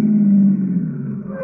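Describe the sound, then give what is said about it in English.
A taxi's engine rumbles low and steady, easing off slightly as the car pulls up to a little white cottage and comes to a stop. “Driver, pull up to that little white cottage there behind that car that just rolled away.”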